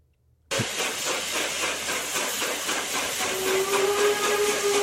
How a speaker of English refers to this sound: Oh, that was a steam engine. I was going for diesel locomotive. Yeah. Well, that was a dead-on diesel. It was, but you forgot the whistle.